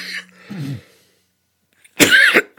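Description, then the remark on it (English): A person coughs: a few rough, throaty coughs, a short pause, then one loud, forceful hacking cough. No talking. “I'm about to have a coughing attack here, which is so uncool these days to be inside someone's house.”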